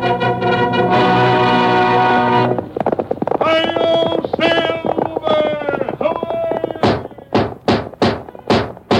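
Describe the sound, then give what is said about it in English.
Brassy orchestral music swells, then gives way to a burst of loud, close galloping horse hoofbeats, a quick, regular series of sharp thuds over the last couple of seconds. “Fiery horse with the speed of light, a cloud of dust, and a hearty high-o silver, the Lone Ranger.”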